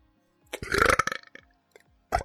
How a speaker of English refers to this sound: Oh, pardon me. That wasn't an alcohol burp either. That was just a regular burp. That might be the first one you've heard from me.